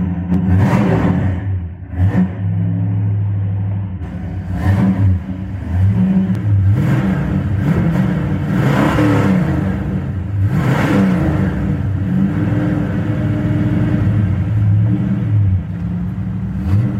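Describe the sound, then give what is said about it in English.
A powerful V8 muscle car engine, a four-speed with a tri-power setup of three two-barrel carburetors rated at 360 horsepower, roars, revving and accelerating with deep rumbling throttle surges and rising and falling pitch that continue steadily for several seconds, with no voices. “There's the sound that we're all waiting for.”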